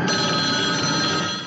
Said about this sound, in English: And it's the opening, and there's that weird, like, phone ringing, which I'm probably going to place into this podcast right mm-hmm. about here.